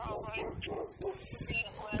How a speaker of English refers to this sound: oh my gosh, stupid dogs barking. This is loud.